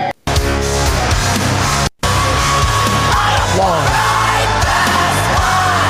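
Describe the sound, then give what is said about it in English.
A loud metal song plays with dense distorted guitars and a harsh, strained male vocal that rises into screaming, briefly cut by two short dropouts near the start. “He screams in that one a little yeah, bit.”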